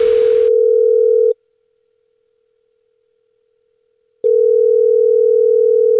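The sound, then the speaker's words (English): A phone line rings out on the caller's end during a Jubal radio phone prank call: a steady, buzzy ring tone sounds twice, each ring lasting a second or two with a long silent pause between, after a brief burst of noise. “It's another Jubal phone prank.”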